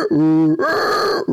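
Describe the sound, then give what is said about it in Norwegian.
A person imitates, with their voice, a donkey's bray heard from behind a hedge: a low, droning groan followed by a louder, higher, strained honk, two loud drawn-out parts in just over a second. “Og det er klart, jeg hadde jo aldri hørt et esel før.”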